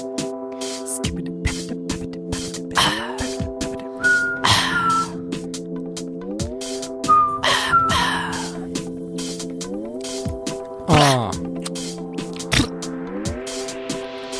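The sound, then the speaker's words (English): A person whistles a tune of sustained tones that step between pitches, with brief higher notes and squeaky slides mixed in. It is moderately loud, and no one speaks. “that was a nice whistle. Thank you. Yeah. Do it again.”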